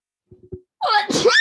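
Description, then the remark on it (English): A few short catching breaths, then a loud sneeze with a drawn-out voiced, wailing tail, heard on its own without talking. “Bless you.”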